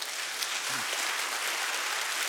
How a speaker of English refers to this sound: Good morning, Pathway Church. Somebody give the Lord a great big hand clap.